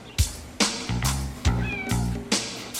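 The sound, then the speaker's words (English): A cat meows loudly, about six short cries in quick, fairly regular succession, with no talking over them. “Oh, hey, kitty. So you decided to come back, huh?”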